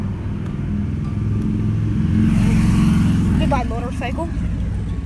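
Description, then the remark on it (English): A motorcycle's engine rumble swells as it approaches, peaks loudly, then fades away, with a voice briefly speaking near the end. “Goodbye, motorcycle.”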